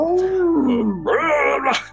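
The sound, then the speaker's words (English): A single person imitates the yell from the film A New Hope, a wild, warbling alien raider yell: a sustained wavering cry that slides down in pitch, then surges into a louder, rising howl before trailing off, about two seconds long. “You do the yell from A New Hope of the right.”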